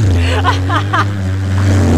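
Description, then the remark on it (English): A voice imitates a Harley-Davidson motorcycle engine: a steady, low, throaty rumble held for about two seconds, with a few brief revving flutters near the start, fairly loud. “I think you need something, you know, a motorcycle seat. You know, it's like a Harley Davidson. That goes...”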